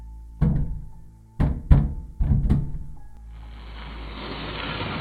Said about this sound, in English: Right then, there was a loud bang on the door, followed by a raking sound. I jumped. In my mind, I pictured giant claws scratching at the door and wood splinters flying all over.